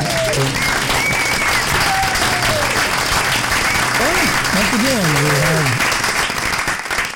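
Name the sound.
crowd applause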